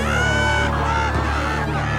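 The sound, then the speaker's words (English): A large crowd at the Burn at the Beach fight roars and shouts in a continuous, loud wall of voices, jeering the American fighter Captain Johnny Taylor, with yells and whoops rising over the dense din for the whole stretch. “Whoa, the crowd certainly has taken a disliking to the American.”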